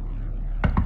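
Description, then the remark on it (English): A familiar knock on Whitney's door: three quick, solid knocks in an even rhythm, breaking a low, steady rumble. The raps are firm and moderately loud, with no voices. “Then, a familiar knock on the door.”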